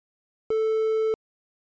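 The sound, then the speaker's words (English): A single steady electronic beep, about two-thirds of a second long, at a fixed mid pitch with bright harmonics, starting and stopping abruptly, with silence on either side; a cue in a German-language learning test after which the listener says the answer. “Please say after the beep sound.”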